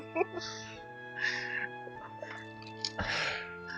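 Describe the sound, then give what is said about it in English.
A single sharp, breathy sneeze bursts out near the end, preceded by a few softer snuffly sounds, all over a steady humming tonal background. “Bless you.”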